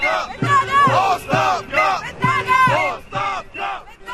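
A crowd of hundreds of protesters against the Bulgarian government chants "resign" in unison in front of the parliament building in Sofia, Bulgaria, over and over in a steady rhythm, loud massed voices rising and falling about twice a second, with whistles or horns faintly mixed in.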